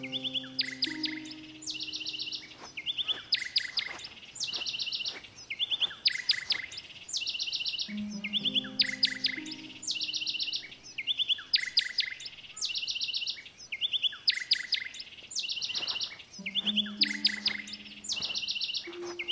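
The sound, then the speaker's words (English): A bird chirps steadily in quick, repeated bursts of high tweets, clear, with a few low tones humming underneath at intervals, as the listener tries to walk towards the bird and catch it. No one speaks. “Now try to catch the bird. Simply walk towards him and make sure he is centered in both ears.”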